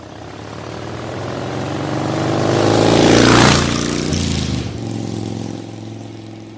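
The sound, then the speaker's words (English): A motorcycle engine, ridden off by a man who jumped out a window and hopped on it, revs up loudly, peaks as it roars past, then drops in pitch and trails off with a steady fading drone. “He jumped out the window and hopped on a motorcycle.”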